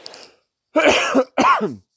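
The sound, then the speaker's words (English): Two loud, harsh coughs from a tickle in the throat follow a faint breathy rasp, the second cough shorter and ending in a throaty, voiced scrape, with no talking around them. “Excuse me, or any, probably should edit that out, but had a tickle in my throat.”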